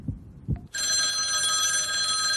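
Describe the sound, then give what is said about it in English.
A telephone rings on an outgoing random call placed to ask a quiz question: two dull low thumps, then a loud, steady electronic ring with bright harmonic tones starts abruptly and holds to the end, with no talking. “All right, let's go to the phones and see who's out there.”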